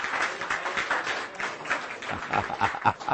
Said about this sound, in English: Come on, give yourselves a clap then. Very, very good.